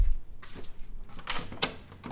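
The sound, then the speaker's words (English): A door is opened, with a few sharp latch clicks and a brief rattle spread over a couple of seconds, fairly quiet and with no one speaking. “Wait, what did you want me to do? Open the door.”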